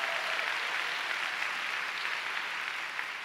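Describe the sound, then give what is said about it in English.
A large crowd claps steadily and loudly for God at a religious gathering, a dense, continuous wash of many hands that holds at an even level throughout, with no voices standing out. “Oh, you want to clap? Let's give the Lord a big clap.”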